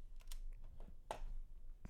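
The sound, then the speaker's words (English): Quick, uneven clicks of computer keys being typed, several distinct taps in a loose rhythm, fairly quiet, with no one talking. “Typing skills are a bit off right now.”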